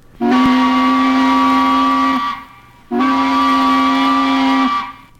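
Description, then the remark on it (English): Two long, loud blasts of a tugboat whistle, each held steady for about two seconds with a brief pause between, rich and brassy in tone with nothing else audible. “Even the sharp whistle of a tugboat.”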